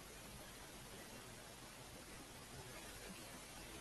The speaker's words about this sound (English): It's kind of hard to hear you because there's static in the background and the static is louder than your voice. Are you on the computer or your phone?